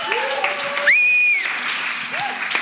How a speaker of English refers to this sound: Everybody love it. So welcome them with a great applause. Woo!